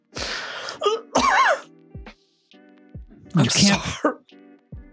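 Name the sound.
coughing and sputtering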